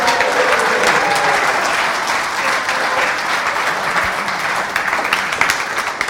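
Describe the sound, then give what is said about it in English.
Sustained applause from an audience for a group who just read aloud the Bible story of Gideon, a dense, steady wash of many hands clapping at a loud, even level for several seconds, with a faint murmur of voices underneath. “Round of applause for those guys.”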